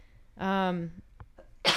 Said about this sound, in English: bless you. That was a cough.